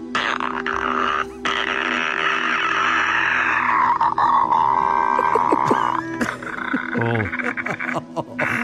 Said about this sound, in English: So I'm going to play the sound for you one more time here, okay? These are the clickers from The Last of Us.